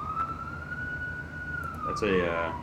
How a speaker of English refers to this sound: That's quite the siren you got going on. It's quite the siren. It's about to pass.